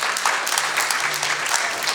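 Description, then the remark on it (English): An audience claps steadily as a clap offering to Jesus: a dense wash of many overlapping hand claps at a constant, fairly loud level with no voices standing out. “Can we clap? I have a clap offering to Jesus.”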